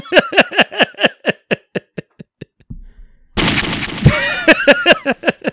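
A gunshot sound effect: a rapid string of sharp, punchy shots, a brief pause, then a loud noisy blast followed by more quick shots, all prominent with no talking.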